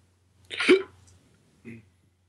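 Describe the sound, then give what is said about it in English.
A single sharp hiccup bursts out with a breathy gulp, followed a second later by a softer, shorter vocal sound, with quiet otherwise. “That was a hiccup.”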